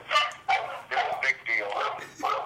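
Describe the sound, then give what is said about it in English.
Small dogs bark and yip in a household, a quick series of about five sharp, fairly loud bursts with barely a pause between them. “Oh, we got the dogs are attacking.”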